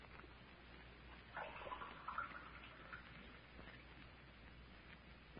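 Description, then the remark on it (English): Water is poured into a glass as a drink for someone lying down, a short, trickling splash lasting a second or two, fairly soft against a steady background hiss, with no one speaking. “could I have a drink of water? Oh, sure thing. Now, I'll have it for you in a jiffy.”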